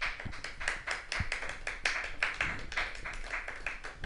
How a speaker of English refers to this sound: That was a very sweet clap. That was like fucking nice birdie on hole nine.